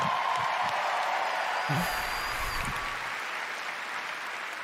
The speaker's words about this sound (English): Another round of applause, please, for Marty Hugo and all of our presenters tonight.